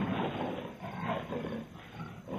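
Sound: big cat roaring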